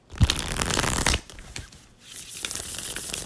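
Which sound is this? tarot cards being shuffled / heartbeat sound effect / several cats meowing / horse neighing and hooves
tarot cards being shuffled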